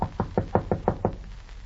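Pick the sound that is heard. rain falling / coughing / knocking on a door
knocking on a door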